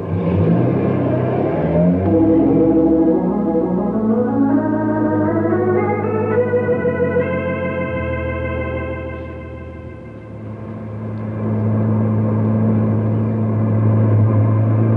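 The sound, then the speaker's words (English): A car engine revs hard and climbs steadily in pitch as it accelerates, loud, holding a high whine, dipping briefly, then roaring back up at speed. No one speaks. “I've got the car under control, haven't I?”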